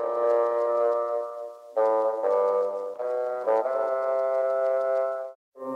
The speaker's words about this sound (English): I use a lot of analog gear and ended up running some of the instruments through some of my outboard stuff. Listen to how this one bassoon part sounds through the tape echo.